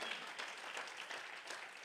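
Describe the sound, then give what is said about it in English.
An audience claps their hands to the Lord in praise, a dense, steady wash of many overlapping claps sustained throughout at moderate volume, with no voices standing out. “Can we clap our hands to the Lord and give him praise?”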